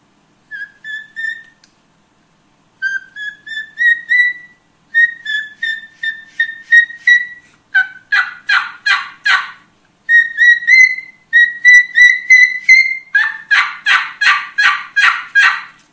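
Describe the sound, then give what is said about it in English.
High-pitched whistles played on a turkey mouth call by passing air across its two bottom reeds, a series of short clear notes that shift into rapid, raspier turkey-like yelps, loud with no talking. “what I do is I push it up in there and I just try to get a little bit of air going across those two bottom reeds to be able to get that high-pitched whistle.”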